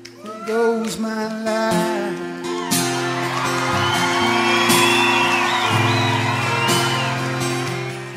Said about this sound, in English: And that spontaneous applause from the audience showing their appreciation to the writer, and the writer, in the end, sharing his life with complete strangers.